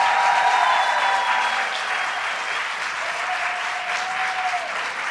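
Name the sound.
applause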